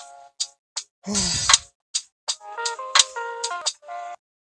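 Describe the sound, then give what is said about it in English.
A phone ringtone plays: a quick, bright electronic melody of short chiming tones, with a brief whooshing swoop near the start, then a few more rapid notes before it stops; an incoming call from an unknown caller at 11 o'clock at night. “From now, I just got a phone call from someone.”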